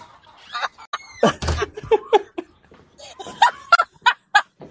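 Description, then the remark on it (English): Chickens on a farm cluck and squawk loudly while laying eggs, in a busy, irregular burst of calls, several birds overlapping with sharp rising cackles and short clucks, no talking. “They make a lot of noise when they're laying, okay?”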